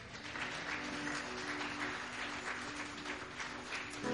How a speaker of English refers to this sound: If you can receive that, why don't you clap your hands and say amen.